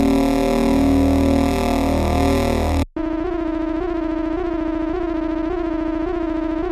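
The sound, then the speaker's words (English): Dense, droning sci-fi city transport tube ambiance cuts off abruptly and returns thin and tinny, heard from outside earbuds, with a steady warbling electronic hum and faint rhythmic pulses. “Futurama City Transport Tube ambiance heard from outside earbuds. A short sound of a voice filtered with trailing reverb.”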